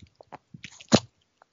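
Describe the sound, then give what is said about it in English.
A dog lets out a single sharp sneeze up close, a bright burst preceded by a few soft snuffles and sniffs, with quiet pauses around it. “In case you haven't been hearing, a dog's right next to me again. You just let off a pretty good sneeze right there.”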